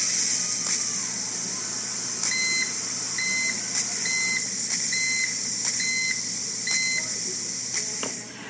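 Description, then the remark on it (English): A pressure cooker cooking a turkey breast beeps six times as it finishes and stops pressurizing, a steady, evenly spaced series of clear electronic tones, heard over a constant hiss of background noise with a few faint clicks. “We're about ready to hear the beep for the pressure cooker.”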